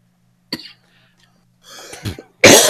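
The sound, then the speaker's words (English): Several harsh coughs break out: a short sharp one first, then a raspy throat-clearing burst, ending in a loud, forceful hack. No talking. “He spit in my mouth, and now I have a cough.”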